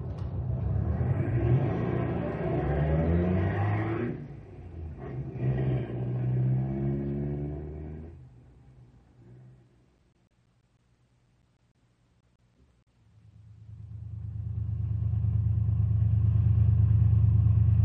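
Car engines rev loudly with rising and falling pitch for several seconds, fade to near silence, then a steady, heavy low rumble of idling motors builds and holds as people warm up their cars.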